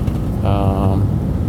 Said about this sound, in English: It's a diesel V8 four-wheel drive 6-foot box as opposed to the 8. Not thrilled about that, but hey, it's free. They're paying the expenses to maintain it, and I finally have a work truck, so it's all good. And as you can tell, it's not terribly loud.